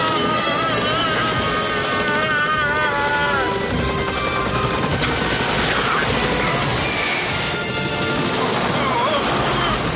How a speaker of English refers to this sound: I love this boost sound that comes from the police helicopter. It cracks me up.